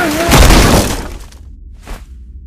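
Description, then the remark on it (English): Someone trying to break an unbreakable door: a loud crash of something breaking apart, a burst of bright shattering noise that rings and scatters for about a second, followed by a short trailing clatter. “If you're worried about wasting your time, you probably shouldn't be trying to break an unbreakable door.”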